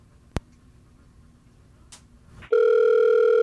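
A sharp click, then a low, quiet hum, before the ringing tone of an outgoing voice call starts: a loud, steady electronic tone with a buzzy edge that holds unbroken to the end. No one speaks.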